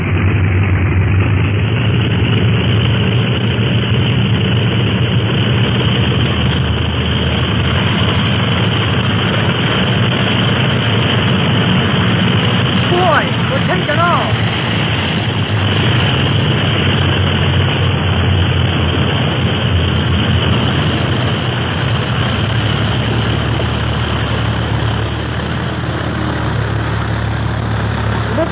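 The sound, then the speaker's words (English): A loud, steady airplane engine roars continuously throughout as the plane takes off, a thick low drone with propeller rumble that stays constant, with no voices over it. “Clint made a good takeoff.”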